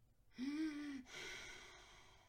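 A single slow, close breath from a sleeper: a brief, faintly voiced inhale followed by a longer, airy exhale that gradually fades, with no talking.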